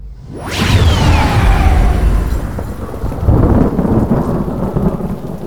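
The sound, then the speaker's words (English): A single loud detonation bursts in with a descending whoosh, then settles into a deep, sustained rumble that rolls on steadily to the end, with no voices. “We have a detonation, his aide called.”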